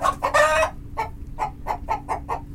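A chicken lets out a loud, drawn-out squawk, then breaks into a quick, steady run of short clucks, fairly loud, with no one talking.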